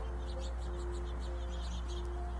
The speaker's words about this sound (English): Okay, the birds want to say something.